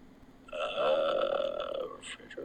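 A person lets out a long, voiced yawn lasting over a second, a steady low tone that fades out, followed by a short breathy puff. No one speaks.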